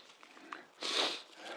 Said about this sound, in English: Excuse my sniffling.